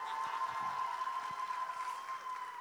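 A crowd at Glenarm applauds steadily for the full few seconds as someone is welcomed up to pray, a dense wash of clapping with a sustained high cheer or whistle running over it. No one speaks.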